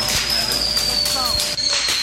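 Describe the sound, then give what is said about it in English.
A fireworks display set on fire by kids at a grocery store in Minnesota goes off in a loud, continuous barrage of crackling bangs and pops, with a steady high-pitched whistle running throughout and faint voices mixed into the noise. “July 4th is more than a week away, but the fireworks came early at a grocery store in Minnesota.”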